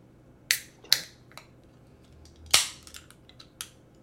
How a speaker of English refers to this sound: You're gonna give us some ASMR on that beer crack? Ready for this? I'm afraid it might fizz.